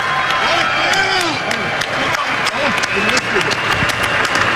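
A loud, dense burst of audience applause fills the room for a contestant's comeback win in a game, many hands clapping at once, with excited shouts and whoops from the crowd rising over it throughout.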